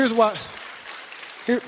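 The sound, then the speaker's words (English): A church audience gives a short burst of soft, scattered applause lasting about a second, praising an increase in the church's MAC group and discipleship numbers, with a speaking voice just before and after it. “And again, you can clap for that.”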